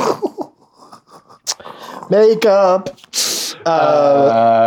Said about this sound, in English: Spit take, Alan Arkin, what's serpentine joke?